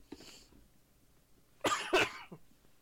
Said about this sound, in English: I do apologise. Crack on. I do apologise to viewers for coughing. I'm trying to do it as away from my mic as possible. But if it is coughy and loud, I do apologise.